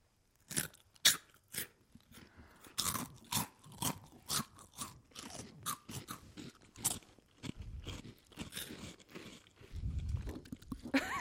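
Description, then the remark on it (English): Several people crunch loudly on Funyuns onion-ring snacks one after another, with sharp bursts of chewing and biting repeating in an uneven rhythm and no talking. “Crunch it right in the pussy. Not all at the same time, though.”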